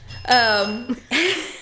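A bright bicycle-style bell is rung once as an excitement bell, clear, its tone ringing out briefly before fading, followed by a short vocal sound.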